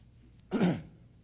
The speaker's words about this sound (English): I'm going to clear my throat one more time.